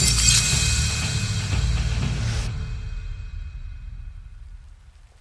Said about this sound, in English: with the shattering of broken glass against her forehead. Her world splintered into nothing.